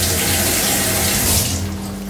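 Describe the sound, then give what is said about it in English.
A steady rush of tap water running into a sink, with the stream's texture shifting and thinning near the end as bell peppers are rinsed under it. “Just rinsing off the bell peppers.”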